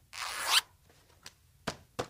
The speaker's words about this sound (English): Now, let's zip our adventure bag together.